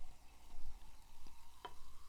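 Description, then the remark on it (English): Cava sparkling wine pours and fizzes, a steady crackling hiss of bubbles broken by a couple of brief, sharp ticks. There's no talking, and the fizz stays fairly quiet throughout. “Not a ton of foam, but maybe I'm just great at pouring.”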